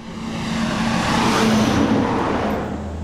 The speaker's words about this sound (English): Coal truck roars to the foot of Blair Mountain through the little community of Blair, or what's left of it.